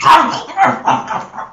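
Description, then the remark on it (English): A voice imitates a bird-like creature noisily eating outside a cottage: a run of four or five loud, gravelly, throaty bursts in an uneven rhythm, half growl and half gobble. “You guys can hear it noisily eating outside.”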